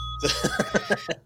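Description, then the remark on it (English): A bell, rung for a correct quiz answer, dings once and its clear, high tone rings on steadily while a burst of rhythmic chuckling laughter pulses over it. “My favorite is hitting the bell before you tell me I'm right.”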